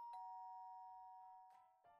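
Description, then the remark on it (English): A doorbell chimes with a bright two-tone ding-dong, its tone ringing out and slowly fading, followed by a couple of short shuffling knocks near the end. “Well, let's ring a bell and see if it wants to meet us.”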